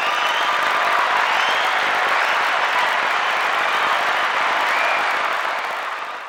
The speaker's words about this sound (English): So let's give them a great big applause here.